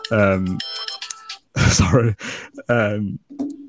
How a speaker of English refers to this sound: so there's the timer.